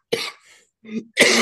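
Two loud coughs bracket a short, rougher throat-clearing sound, all within about a second and a half, with no talking.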